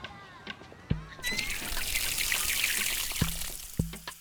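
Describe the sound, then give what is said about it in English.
Water splashes and pours in a steady, hissing rush as a backyard pool is filled, starting after a brief quieter moment, with a few soft thuds punctuating the continuous flow. “I hear the sound of water splashing.”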